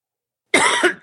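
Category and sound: human body sound, cough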